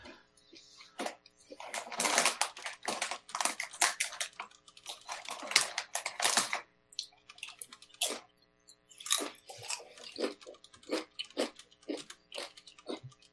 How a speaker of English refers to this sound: I apologize for my crunching. I'm eating chips. Not a problem. It's food. My dinner. Chips and leftover salsa.